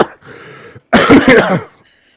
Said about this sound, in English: The other thing is, I've noticed I've had a persistent cough ever since then, and sometimes my voice changes to like an Irish.